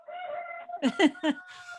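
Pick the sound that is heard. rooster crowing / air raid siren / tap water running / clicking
rooster crowing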